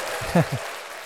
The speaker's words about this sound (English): So, hey, round of applause